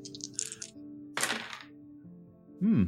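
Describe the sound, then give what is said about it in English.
Purple dice clatter in two short bursts of sharp, bright clicks and rattles over a low steady hum, followed by a brief voiced sound at the end. “Let's use the lucky purple dice, because the green ones have been absolutely appalling.”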